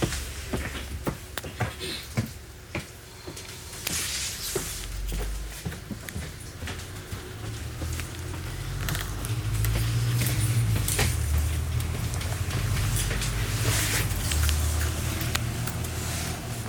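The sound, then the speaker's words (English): Inside a bus, with the next stop Headingley Lane: scattered clunks and thuds near the start, like doors and footsteps, give way to a steady low engine rumble that swells and holds through the second half. “On the bus.”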